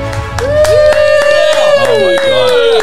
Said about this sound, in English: Ladies and gentlemen, please sit down. Oh, please. Oh, I don't deserve this absolute standing applause. Wow. Please.